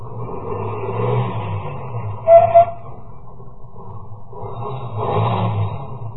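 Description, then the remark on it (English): A car engine hums, swelling and easing off as the car, having stopped and turned around, comes back toward the listener and slows, with a short high squeal partway through and no voices. “Ahead, the car that passed me slowed down, and it also stopped. Then turned around and came back toward me.”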